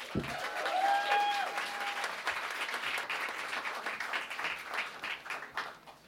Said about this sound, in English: Guys, huge round of applause.